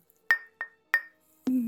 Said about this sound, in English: Cheers. Cheers is right. So nice. And we're all going to be clinking glasses soon here.